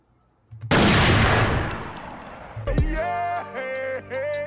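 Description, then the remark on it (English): A single loud cannon blast booms out with a long, noisy rumbling decay, followed by a bright, ringing musical sting with sustained tones and no talking. “I'm going to need you to load up the cannons for me here.”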